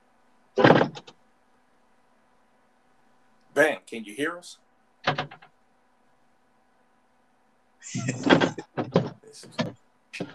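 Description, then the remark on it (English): Several loud, abrupt bangs and clunks at irregular intervals as a door is swung open and shut again and again, with a voice briefly calling out between them. “That's the fifth time he did open and close this door.”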